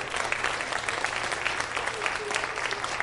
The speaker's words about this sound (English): And just give them a big round of applause.